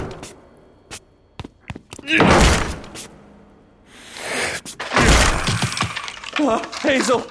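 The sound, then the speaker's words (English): A series of sharp knocks gives way to two heavy, crashing bursts of splintering and breaking as a door is broken down, with shouting voices overlapping the commotion. “I'll break it down. Away from the door.”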